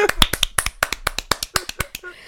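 A quick, uneven burst of hand clapping: roughly a dozen sharp, crisp claps in just over two seconds, fairly loud and bright, tapering off at the end.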